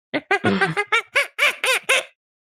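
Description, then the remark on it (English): A person imitates a monkey with a quick run of about nine shrill, squeaky hoots rising and falling in pitch, loud, with no other talking. “My monkey impression.”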